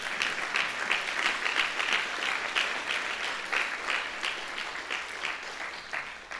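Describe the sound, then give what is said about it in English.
An audience breaks into steady applause after hearing that 370,000 Muslim-background believers have completed a 9-book discipleship series, a dense wash of many hands clapping at a fairly even level for several seconds with no voices on top. “Yeah, you can clap on that.”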